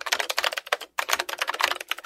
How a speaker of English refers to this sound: That's a mechanical keyboard, practically ubiquitous in the 80s. By the mid-90s, they'd started to fall out of fashion and were being replaced by much cheaper to make and lamer to type on membrane keyboards.